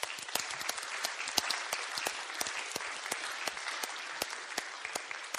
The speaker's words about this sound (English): Can we just give everyone a round of applause in this room right now?